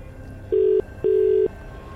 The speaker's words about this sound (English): Right, let's call the person who has been randomly selected. Best of luck.